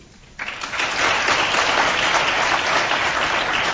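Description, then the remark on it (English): An audience breaks into applause to vote on which science news item they think is fake, here the one about the smallest nuclear genome. After a brief quiet moment, the clapping swells quickly into a dense, steady wash of many hands that holds for several seconds. “So how many people in the audience, and respond by applause, how many think that the first one about the smallest nuclear genome is the fake?”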